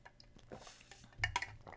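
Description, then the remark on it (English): Someone quietly sips water: soft wet mouth clicks and squishy slurps, with a brief cluster of louder swallowing sounds toward the end. No one speaks. “See, taking that sip of water.”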